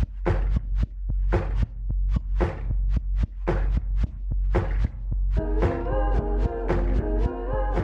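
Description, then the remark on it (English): The opening beat of a music track: a steady, loud beat of hollow thumps like hands banging on a table over a deep droning bass, joined halfway through by wavering, warped-sounding sustained tones. No voices. “And it starts with this beat that sounds like it's made from vinyl warps and sounds of like banging on tables.”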